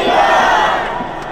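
An angry crowd of protesting fishermen, marching down Charles Darwin Avenue and throwing rocks and sticks over limits on their sea cucumber catch, shouts and roars together in a dense, sustained wall of voices, loud and steady with no single speaker standing out.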